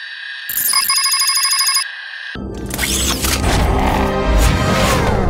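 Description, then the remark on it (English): The ringtone of a Samsung SPH-N270, the Matrix phone made as a tie-in for The Matrix Reloaded, plays for about two seconds, a bright, pulsing electronic melody, then abruptly gives way to a loud, dense rush of rumbling, crashing noise. “Answer the call.”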